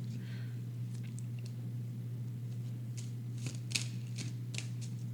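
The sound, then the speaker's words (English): A deck of tarot cards, a Thoth deck, being shuffled, with soft papery riffles and irregular flicks and taps over a steady low electrical hum. No one speaks. “Gonna do a little bit of horrible shuffling.”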